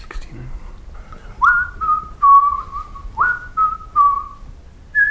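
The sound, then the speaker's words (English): Someone whistles the nursery rhyme Three Blind Mice as a quiz clue: a short phrase of clear, gliding notes that step downward, played twice in a row. The whistle is steady and prominent over a faint background hum. “Come on, that's our first ever musical accompaniment to a game.”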